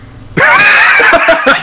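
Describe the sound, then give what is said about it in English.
A person lets out a loud, sustained high-pitched scream, imitating a character shrieking, that starts abruptly after near silence and wavers in pitch for over a second. “Sure, screaming, screaming or whimpering? Oh, he's screaming.”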